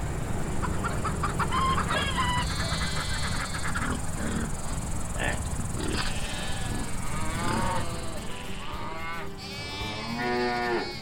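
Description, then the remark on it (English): Farmyard sounds: a rooster and clucking chickens call over a steady background while cattle moo in low, drawn-out bellows, with rapid repeated squawks toward the end. No one speaks. “We just visited on their farm, spent some time with them, and it was just really neat connecting with them.”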